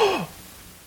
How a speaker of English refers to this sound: Shock. Thank you for your gasp